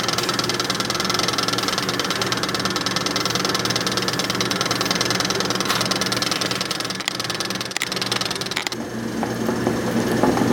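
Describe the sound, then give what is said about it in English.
A pot of water with rice boiling hard, a steady, dense bubbling and rumbling that holds at an even loudness for about ten seconds, with no voices. “So the rice is boiling and the chicken is cooking.”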